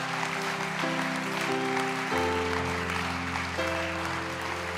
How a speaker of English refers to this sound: But right now, if you know you need to come, if you see someone coming, clap them on down.